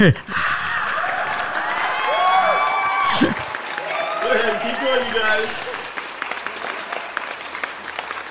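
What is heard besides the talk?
audience applause sound effect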